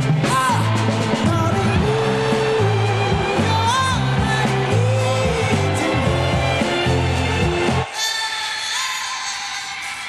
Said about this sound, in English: Because pretty soon, this place will be full again. Until then, cue the crowd noise.